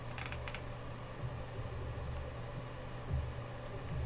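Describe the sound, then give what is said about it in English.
A short burst of computer keyboard typing, a few quick key clicks, then a lone click or two later, all faint over a steady low hum of a fan. “It just looks like so typing.”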